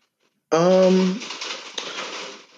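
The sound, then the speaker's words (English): Steady rain pattering and trickling outside a room in Astoria, a continuous hiss of droplets that starts abruptly with a short voiced sound and then carries on evenly. “God, as I wait for the rain to trickle down.”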